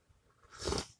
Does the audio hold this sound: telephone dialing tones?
no